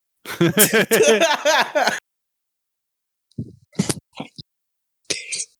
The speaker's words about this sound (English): Every time I laugh, I fucking cough. God damn it.